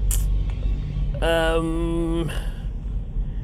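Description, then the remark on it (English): A car's steady low engine and road rumble in traffic, broken midway by a loud, sustained horn-like blare lasting about a second, with no one talking. “It's a little long, and I got lots of traffic.”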